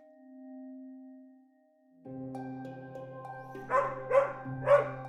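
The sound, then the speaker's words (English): A dog barks three times in quick succession near the end, sharp, over a sustained, swelling musical backdrop that begins with a soft low tone. “We dismiss a bark, a whine, or a cry, shrugging it off as attention-seeking behavior.”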